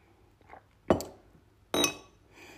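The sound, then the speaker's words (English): Coffee being sipped from a cup, marked by two sharp, ringing clinks of the cup about a second apart, with a faint soft sound before them and no talking. “Another sip of this amazing coffee.”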